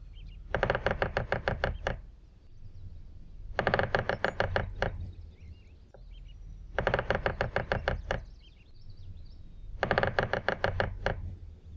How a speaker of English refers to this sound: And here, let's listen to the drumming code of what a pileated woodpecker sounds like and listen and see if you can hear the difference in cadence, pacing, or volume.